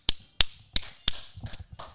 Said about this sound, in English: Hand clap to Kendall.